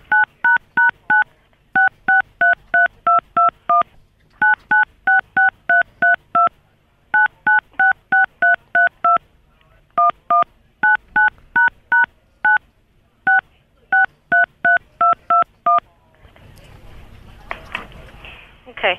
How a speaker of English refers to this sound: I'm going to ask you this one last time. Do not punch the numbers on the phone. Don't use your fingers to punch the numbers on the phone.